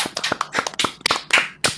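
A small group claps in a quick, irregular burst of applause, sharp overlapping hand claps at moderate loudness with no voices over them.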